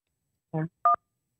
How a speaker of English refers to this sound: We got a phone call coming in. Hold on. Let me. I'm going to just take it first.